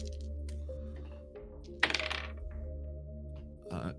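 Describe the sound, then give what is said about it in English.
Dice clatter sharply as they come out of an eyeball-shaped dice bag, then rattle in a quick burst of tapering clicks as they roll, followed by a shorter rattle near the end, all over a steady low electrical hum. “Sorry, I was talking to my dice bag.”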